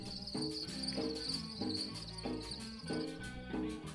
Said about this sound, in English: Can you hear the crickets?